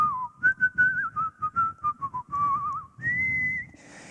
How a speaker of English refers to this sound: And so I'm sitting at the coffee shop, tapping my foot, and as some of you, I believe, have noticed, I have a tendency to whistle kind of without realizing, and so I'm sitting there.